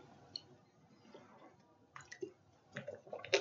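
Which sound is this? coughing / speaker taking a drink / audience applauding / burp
speaker taking a drink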